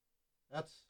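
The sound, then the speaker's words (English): A brief voice gives way to a loud, steady telephone dial tone from a radio station's phone system, cutting in abruptly at the very end and dominant. “That's definitely a dial tone.”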